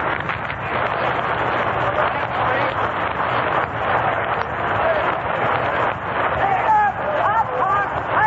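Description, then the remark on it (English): A muffled, indistinct public address announcement at a ballpark in Cleveland on a warm, cloudy day, heard from the upper deck through a poorly working public address system, its words lost under a steady roar of crowd hubbub and wind noise, with a few clearer voice inflections near the end. “Public address system isn't working very well.”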